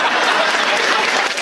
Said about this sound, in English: The applause.